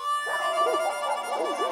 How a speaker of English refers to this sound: Mike's dogs go wild as if spooked by Mike's mere mention of the name.